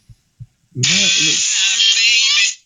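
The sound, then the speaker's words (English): A phone alert tone from the video game Duck Hunt: two soft thumps, then a bouncy low warbling blip under a loud, bright, buzzing electronic tone that holds steady for nearly two seconds before cutting off. “This is so these are alert tones that I use.”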